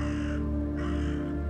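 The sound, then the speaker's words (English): A raven gives two harsh, raspy caws in quick succession, loud, with a brief gap between them and no voices. “Quoth the raven, nevermore.”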